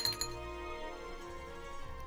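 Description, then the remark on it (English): Glasses clink together in a toast in a furnished basement, two quick bright taps near the start followed by a lingering ringing tone, with a faint hum underneath. “raise a glass to Chris Pratt”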